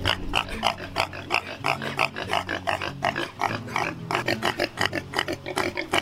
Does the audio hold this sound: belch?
no